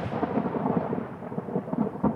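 A deep, rolling rumble of thunder from a lightning storm exploding in the sky over a small white trailer, sustained and fairly loud throughout, with low booming swells and no voices.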